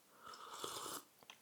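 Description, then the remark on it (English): A single quiet slurping sip of tea from a mug from Prague, lasting about a second, airy and hissy, followed by a couple of faint soft clicks like a swallow or lips parting. No one speaks. “So I'm sipping on my tea.”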